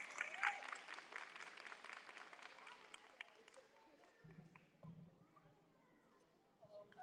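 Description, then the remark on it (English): At a school event, an audience claps for the Dean of Students being welcomed to the podium, in a dense, steady burst of applause that gradually thins and fades, with a few scattered claps lingering at the end. “Let's give her a hand of applause. Round of applause.”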